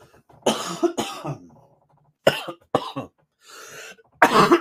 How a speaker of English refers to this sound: Sorry, I am sick, so I hope I don't destroy your eardrums with my coughing fits.